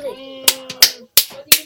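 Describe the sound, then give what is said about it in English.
Five sharp, loud hand claps in an uneven rhythm, a couple close together then spaced apart, with a faint voice murmuring under the first part. “Why are you clapping your hands?”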